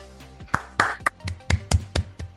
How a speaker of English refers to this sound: It's a really terrible round of applause, guys.